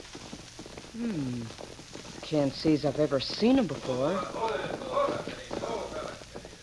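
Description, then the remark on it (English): A man talks over a steady clip-clop of horses' hooves in the background as two men ride toward the house, the rhythmic hoofbeats fairly faint beneath his voice. “Two men are riding this way.”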